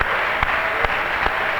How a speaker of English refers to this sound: Why don't we give the Lord a hand clap of praise, thanking him for a revelation and an understanding of who he is.